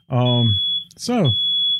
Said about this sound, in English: Oh, my, don't worry about that. My daughter's done set off the fire alarm again. I don't think we're going to burn up, are we? No, it's just they're tied together.